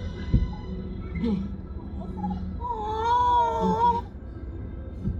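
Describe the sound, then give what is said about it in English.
A cat, no longer a kitten, cries out in one long, wavering, plaintive wail lasting about a second and a half, over a steady low background rumble with a few soft knocks. “He's not even a kitten anymore.”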